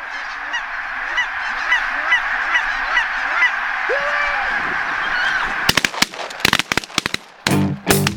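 A large flock of geese honks continuously, many overlapping calls forming a steady chorus, then a rapid series of loud, sharp bangs like gunshots cuts in over the last few seconds.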